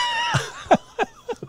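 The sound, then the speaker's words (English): A horse whinnies in a wavering, descending call, followed by a few short, sputtering bursts of nickering in a quick rhythm, clear with no talking. “For the whole horse experience.”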